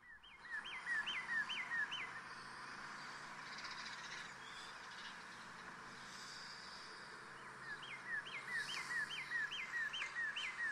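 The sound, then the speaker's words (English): Birds chirp in the morning, heard just after waking, in repeated bursts of short, rising whistled notes, clustered at the start and again near the end, over a steady background hiss of outdoor ambience. No one speaks. “The birds are out, keeping us company, as always, every day. And you can hear them, they're more pronounced.”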